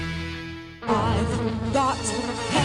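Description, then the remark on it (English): A mosquito buzzes: a steady droning whine that shifts after a moment into a louder, wavering buzz, continuing for a few seconds with no voices. “It's time to mount a counterattack on mosquitoes and reclaim your yard.”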